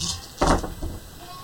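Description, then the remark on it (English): Dice clatter and tumble in a short, rattling burst, followed by a softer second knock as they settle. Moderately loud, with no voices over it. “Make a lot of dice. Rolling.”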